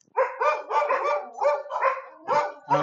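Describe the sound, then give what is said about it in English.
Dogs bark in a quick, overlapping run of about seven loud yelps, with no one speaking. “Oh yes, the dogs.”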